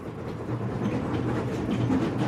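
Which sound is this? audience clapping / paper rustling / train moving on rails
train moving on rails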